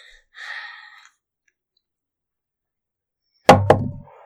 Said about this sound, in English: Roll the other two dice. Zero. Roll it again.